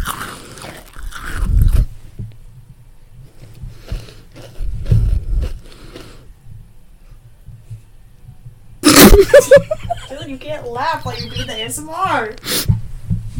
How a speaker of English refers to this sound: Just bring it closer to me while I chew on it.